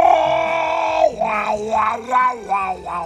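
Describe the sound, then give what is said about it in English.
A person imitates a seagull at a seagull-imitation screeching competition judged by a panel of five judges: one long, strained screech, then a string of about five rising-and-falling squawking calls in quick rhythm. The calls are loud, with no other voices. “Originating 5 years ago, what started as a local good old time in a Belgian coastal town, of course, turned into a Europe-wide following filled with squawking seabird enthusiasts who show off their best imitation screeches for a panel of five judges.”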